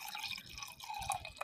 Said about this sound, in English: I'm about to pour myself another glass.